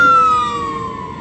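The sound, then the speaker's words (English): A fire truck siren wails loudly, a steady high tone with harmonics that slowly drops in pitch and fades slightly as the vehicle moves away. “That's called audible activity under the light source. Those are literally demons using a fire truck to engage in the pattern of conduct.”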